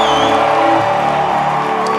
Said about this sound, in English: I'm ready, Lord. Let there be a flow. Scream and give him a clap and a shout.